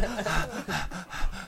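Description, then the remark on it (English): Heavy, rapid breathing from a dog, with about four quick rhythmic huffs in a row, each a breathy rasping pant, loud and steady with no talking. “Heavy breathing the whole time.”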